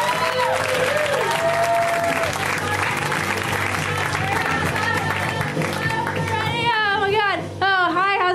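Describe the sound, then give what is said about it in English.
A large comedy-show crowd applauds loudly and steadily for comedian Alice Wetterlund, with shouts and rising whoops of cheering breaking through the dense clapping, especially toward the end. “Give it up for Alice.”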